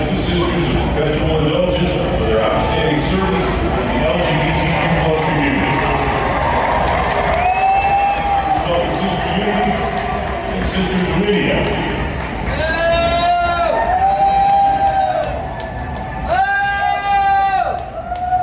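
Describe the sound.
Loud, drawn-out boos ring out in a few long bursts from two men, carrying over a steady roar of crowd noise in a large stadium at a Dodgers event.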